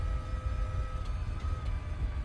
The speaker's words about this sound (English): The engine sounds less like a traditional car and more like some kind of spaceship.